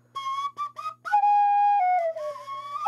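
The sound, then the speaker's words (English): A small whistle is blown: a few quick toots, then a long sustained note that steps down in pitch before some warbling notes, with no talking. “Some people actually like the penny whistle. Oh, that's a different one, though.”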